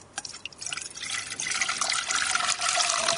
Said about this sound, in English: OK, so we'll pour that into the saucepan now.